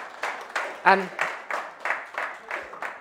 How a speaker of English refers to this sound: Amen. That deserves a round of applause for the Lord Jesus.